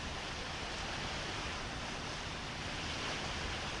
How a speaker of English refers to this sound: Want to get some of the sound of that water down below. We're standing above where we're getting close to Siwash Rock above the seawall down below.